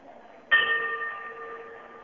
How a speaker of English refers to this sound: Okay. I'm going to give it one bell.